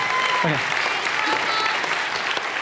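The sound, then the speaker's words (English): A group claps steadily in a dense, continuous patter of applause that holds at an even loudness throughout, with a brief voice breaking through early on. “You can clap for them.”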